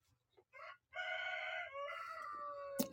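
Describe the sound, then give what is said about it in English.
A rooster crows once, loud, a long harmonic call that rises and stretches out over a couple of seconds, ending with a brief sharp click. “If they get alarmed, they will crow at night.”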